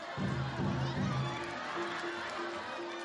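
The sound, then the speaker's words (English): A kabuki theater audience calls out loud cheers such as "Narita ya!" over a dense crowd murmur, with sustained tones held beneath the shouts throughout. “You'll also hear audiences during these performances yelling out, Narita ya!”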